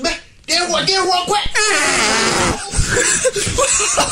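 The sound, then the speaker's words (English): A loud, drawn-out fart sound rasps out for about a second in a played video segment called How to Swear in Chinese, wedged between bursts of excited voices speaking Chinese and what sounds like laughter, slightly compressed like video playback. “Because it was before the fart. It was before the fart.”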